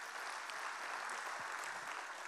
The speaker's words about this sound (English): And to our family at SCI Chester in partnership with God Behind Bars, show them some love, family. Clap for them.